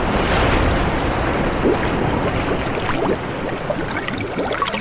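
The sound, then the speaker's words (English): Dense, rushing water fills the sound with a heavy, muffled roar, as if submerged, while waves crash and churn overhead with faint bubbling streaks; loud and continuous, easing slightly near the end. “I wanted for the listener to be dragged underwater and to get that sensation of rushing water and bubbling in the ears and almost that kind of claustrophobic feeling you get from being submerged underwater with the waves crashing over you.”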